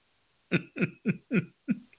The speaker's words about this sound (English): Not only is he coughing, he looks like he's about ready to, like, toss a lung here. I'm damn close.